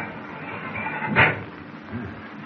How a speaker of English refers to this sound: I'll try this steel door, see what it needs.